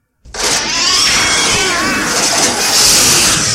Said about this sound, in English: That's the ice missile shooting somehow sideways into the house next door.